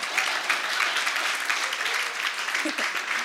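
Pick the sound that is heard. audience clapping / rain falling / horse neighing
audience clapping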